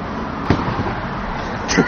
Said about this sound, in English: See if you can capture the sound of me chucking a Jack VHS on top of a bus stop.